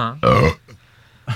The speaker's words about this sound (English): The reason I think, hold on, a burp's coming.